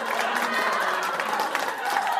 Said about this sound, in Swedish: Hörrni, så himla kul att få samlas här ikväll för att hylla vårdcentralsgänget. Verkligen, eller hur va? Ja, precis. Ge dem en applåd nu.